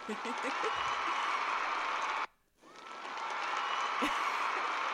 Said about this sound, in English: That concert just stopped applauding, made applause, and decided to start all over again. That's how good it That's was. How big that was, yeah. It was a really big moment.